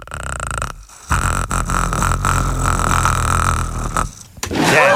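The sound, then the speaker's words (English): A human voice imitates the growl of the Predator from the movie The Predator: a loud, rough, rattling throaty snarl held for several seconds, broken by two brief pauses, with a purring, clicking texture and no other talk. “My other secret skill is I can make my voice sound like the Predator from the movie The Predator.”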